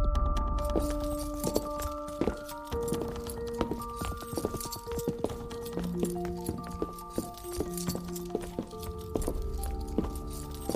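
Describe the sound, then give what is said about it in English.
Chains clink and jangle with irregular metallic rattles as a prisoner, hands handcuffed in front and feet in shackles, shuffles into a room for a daily exam, slow footsteps scraping along steadily without any voices. “The prisoner shuffled into the room for his daily exam, his hands handcuffed in front of him, feet in shackles as well.”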